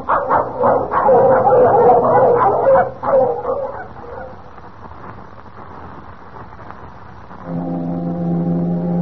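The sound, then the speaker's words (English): Dogs bark and yip excitedly for several seconds, then fade, and a deep, steady foghorn blast sounds near the end, its low tone holding loud and sustained. “That foghorn. Last time I heard it, Kemp, was over 3 years ago.”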